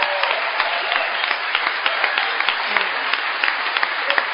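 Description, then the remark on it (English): Steady audience applause for a speaker's sobriety at a gathering celebrating 70 years of Alcoholics Anonymous, a dense wash of many hands clapping at an even loudness throughout, with sharper individual claps popping out of the crowd noise. “I want you to know that I love the applause that comes for sobriety, because I know that we're applauding Alcoholics Anonymous, and what an exciting time, 70 years.”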